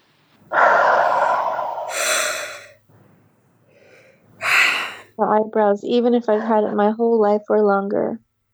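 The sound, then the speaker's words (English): A long, deep, breathy inhale and exhale while a person taps all over their skull, then a second sharp breath, followed by someone talking; any tapping is not distinctly audible beneath the breathing. “Tapping all over the skull and breathing.”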